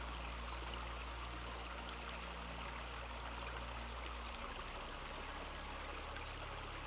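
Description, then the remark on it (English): Steady flowing stream water rushes and babbles continuously, a dense, even wash of sound with no voices and no breaks. “Sending gratitude to the water for washing away old hurts, old stories.”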